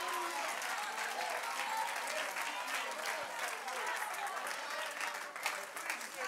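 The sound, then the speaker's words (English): An audience on their feet claps their hands to magnify the name of Jesus, a steady, dense wash of applause that holds at an even, fairly loud level throughout, with faint crowd murmur mixed underneath. “I wish I had a few people that would rise to your feet, clap your hands, and magnify the name of Jesus.”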